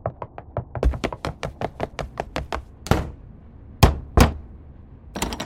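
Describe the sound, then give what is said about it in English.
Rapid, steady knocking on a door, a quick run of sharp raps, followed by a few heavier, spaced-out pounds and a final flurry of knocks. No one speaks. “Open the door.”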